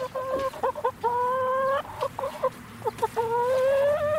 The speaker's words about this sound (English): Here's some chickens. What are they having for treats today? They're having peanut butter and bugs.